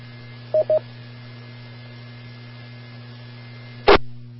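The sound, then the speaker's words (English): Radio repeater automatic identification tones during an amateur radio net: two short, quick electronic beeps over a steady background hum, followed a few seconds later by a sharp burst of static as the channel drops. “and I'll take my cue from the repeater to ID.”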